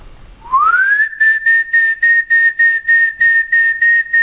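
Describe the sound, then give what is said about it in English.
A loud whistle used to call two puppies for a walk slides upward into a steady high note, then breaks into a rapid, even series of about eight short pulsing blasts, with no talking. “like we go out, we find the pups, we have this whistle, go for it.”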